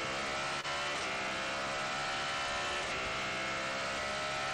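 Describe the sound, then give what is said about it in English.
A normally aspirated Cadillac race car engine, the biggest capacity in the field, roars continuously at steady high revs, a dense, harmonic drone with no pauses and no voices. “Sound of the engine in the background is the normally aspirated Cadillac, biggest capacity, isn't it, in the field.”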